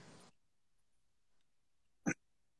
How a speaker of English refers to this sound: First thing that always pops in my mind is, there's my dog commenting, Ireland with the four-leaf clover. Good job, Rutherford.